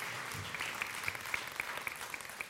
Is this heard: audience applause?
yes